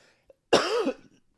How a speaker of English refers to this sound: Still having some symptoms, scratchy throat, cough, which is coming in about now. So if I start having coughing fits in the middle of this podcast, please forgive me.